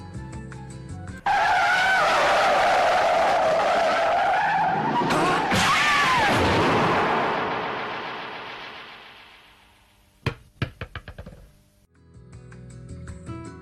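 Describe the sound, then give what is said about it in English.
A loud, sustained car skid with screeching tires fills several seconds, then fades out, followed by a few sharp thuds and clatters. “Oh, there's a car coming!”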